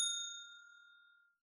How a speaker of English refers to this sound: at some point in this conversation, we're going to talk about the ending, because I've read the book and seen the movie, and the endings are different, so I'm going to hit the bell.